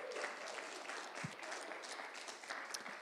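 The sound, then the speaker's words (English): A church audience applauds a friend's journey home after a 70-day trip, a dense, steady patter of many hands clapping that holds evenly for several seconds with no voices standing out. “And can we give a clap?”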